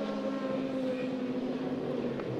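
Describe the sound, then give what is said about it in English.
A steady, droning roar of racing engines as race cars, including the number 4 Corvette, pass on a track, holding at a constant loud level throughout, with layered mechanical tones and no voices. “There goes the four Corvettes.”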